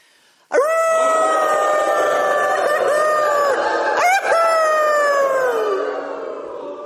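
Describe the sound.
A group of people howl together like wolves as a way of mourning together, one long sustained wail that slowly drops in pitch, briefly breaks and swells again, then fades out after several seconds.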